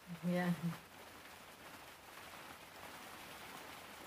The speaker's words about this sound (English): It's like festival rain now. This is the rain they have at Glastonbury, you know, and you have to just zip up your tent and eat your provisions, drink your cider. Wait for it to end.